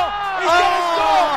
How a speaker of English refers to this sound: No, he's mobbed by his teammates. And the crowd here at Bankwest goes crazy. Their man, Mike Acebo, has scored just before half-time.